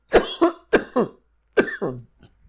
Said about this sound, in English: You okay? I don't know. I'm coughing.